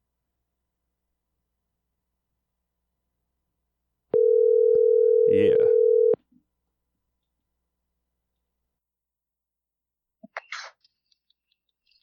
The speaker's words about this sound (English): I think I should be able to make this phone call, and all of you hear it.